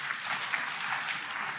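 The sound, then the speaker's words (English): A crowd claps steadily in response to a speech on Nigeria's presidential election, a dense wash of many hands applauding, sustained and even for the whole short stretch with no voices. “That's a good place to clap and thank God.”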